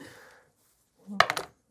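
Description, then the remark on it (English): A quick clatter of many dice rolled for damage, totaling 14, knocking together in several sharp clicks packed into about half a second, following a brief faint murmur and a moment of silence. “What happens is it hits you, and when it makes impact, first let me roll for damage.”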